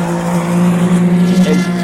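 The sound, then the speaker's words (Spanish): A Toyota race car at a racing circuit drones steadily and loudly, its deep harmonic tone holding nearly constant pitch as the car rolls downhill, with no voices over it. “Mira, está bajando la Toyota.”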